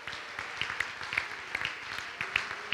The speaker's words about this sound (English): In the name of Jesus, somebody clap your hands in the house.